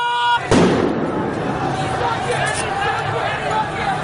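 A single sharp gunshot cracks out, fired by armed Basij forces from the rooftop of a Basij base in Tehran down at a crowd of protesters, followed by the continuous roar and babble of a large agitated crowd chanting slogans.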